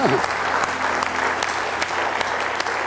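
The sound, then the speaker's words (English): An audience claps steadily throughout for an engaged couple, a dense, sustained wash of many hands with no pauses, at a fairly loud and even level. “Can we give them a nice warm hand for them?”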